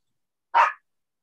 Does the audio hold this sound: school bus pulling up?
no